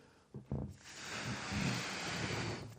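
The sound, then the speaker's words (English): A long, steady rush of breath blows into a balloon for a couple of seconds, fairly loud, after a couple of short puffs at the start. “We are the balloon. Here's God. Pouring into us, blowing into us.”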